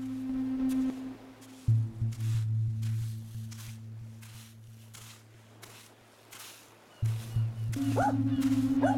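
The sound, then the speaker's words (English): A soaked dog in the ocean barks repeatedly in a steady, evenly spaced rhythm, the sharp barks ringing out over a low, sustained droning tone that swells in and out. “Look at that stupid dog. He's completely soaked.”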